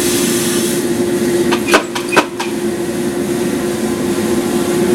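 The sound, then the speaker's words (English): A steady mechanical whir with a low hum runs throughout as coffee beans tumble in a flame-heated roaster drum at around 420 degrees, monitored by a digital temperature probe, with a short cluster of sharp rattling clicks partway through. No one speaks. “There's a digital probe in here that'll give us a precise temperature of the beans as they're moving through the drum.”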